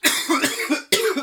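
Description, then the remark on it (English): Two forceful coughs, the first a longer raspy burst and the second a short sharp one right after, loud with no talking around them. “And coughing in that live?”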